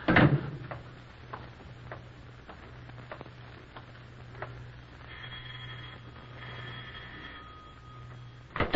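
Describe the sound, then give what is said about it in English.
A car door thuds open at the start and shuts again at the end, with a low idling hum, scattered light clicks and a brief electronic chiming tone in between. No one speaks. “Oh, here, I'll open the door for you.”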